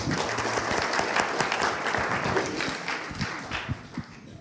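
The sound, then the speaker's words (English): A crowd in a hall breaks into sustained applause, many hands clapping in a dense, steady patter that stays fairly loud throughout with no voices standing out. “Can we actually have a round of applause?”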